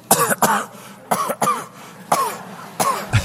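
A string of sharp coughs comes in quick bursts, about five or six harsh hacks in pairs, loud with no talking between them.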